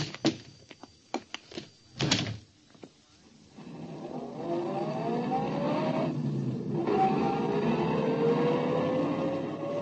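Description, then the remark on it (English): A few sharp clicks and thuds, like a door and ignition, then a car engine turns over and roars steadily, revving up and rising in pitch as it pulls away. “I led him unresisting to my car.”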